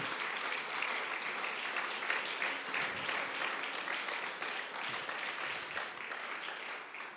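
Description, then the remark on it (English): An audience applauds, giving a round of applause to Jesus: a dense, steady wash of many hands clapping that holds at an even level for several seconds with no voices on top. “Let's give a round of applause to Jesus for his peace.”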